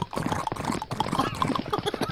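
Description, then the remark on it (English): A big horse's hooves clip-clop in a quick, steady galloping rhythm, fairly loud, with a busy layer of background noise running underneath the whole time. “Want to jump on this big-ass horse?”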